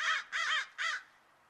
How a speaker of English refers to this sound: Ah, you damn pink birds! Always crapping your yogurt all over my car. I wish I lived in some snow. Get rid of you damn pink birds.